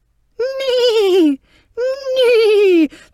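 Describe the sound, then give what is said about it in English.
A person's voice imitates a horse's neigh in two long, wavering whinnies, each sliding downward in pitch, loud with a short pause between them. “Was that you neighing”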